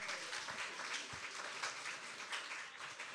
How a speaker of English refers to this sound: Team number 8 did not win, but I'd like to give them a round of applause for getting 2 points.